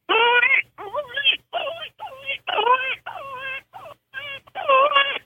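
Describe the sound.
A predator call, turned over and blown with the lower lip, imitates a distressed rabbit: about ten loud, quavering squeals in quick, uneven bursts, each wavering in pitch like a frantic cry, with no talking.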